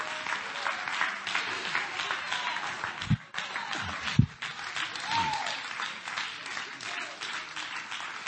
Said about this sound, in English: Come on, stand to your feet and clap your hands to the Lord and give him praise.